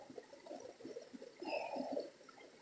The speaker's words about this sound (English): As the ancient music of the stream soothes you.